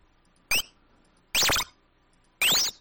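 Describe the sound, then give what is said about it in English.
Three separate 8-bit video game jump sound effects from a sound generator's jump preset, each a bright, loud synthetic burst with rising and falling bleepy pitch sweeps, spaced apart by short silences; the later two last longer. “We can go to the jump noise, the jump preset.”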